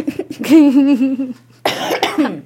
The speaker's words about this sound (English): Oh, this cough's terrible.